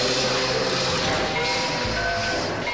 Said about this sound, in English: With a noise like a steam engine, three monsters appeared.